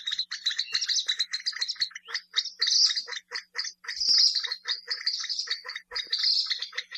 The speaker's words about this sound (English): The loud calls of these birds are very distinctive and sound a bit like the grunts and squeals of pigs.